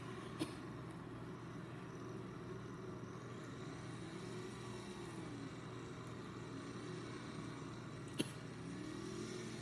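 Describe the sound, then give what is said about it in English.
A race car engine in a racing video game hums and revs steadily during practice on a road course, its pitch rising and falling slightly, with two brief sharp clicks near the start and end. No one speaks. “Listening to that engine is so sleek.”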